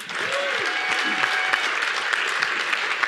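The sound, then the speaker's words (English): Steady, dense applause from an audience, many hands clapping together at an even loudness for a few seconds, with a faint tonal whistle or whoop rising briefly near the start. “Let's give them a round of applause, right?”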